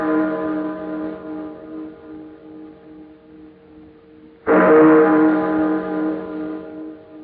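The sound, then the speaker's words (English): Tower chimes ring late on Christmas Eve with a long, humming resonance that slowly fades, then a fresh, louder strike blooms about halfway through and lingers. No voices are heard. “I've been caring for these chimes nearly 20 years now. And this is the first time I ever know them to ring late.”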